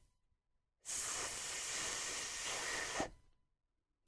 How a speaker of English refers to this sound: The position of the tongue is exactly the same for the unvoiced TH sound. The difference between the sounds is that the vocal cords are not vibrating during the unvoiced TH. Listen to the unvoiced TH.